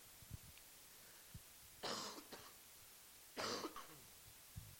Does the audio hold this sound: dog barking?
no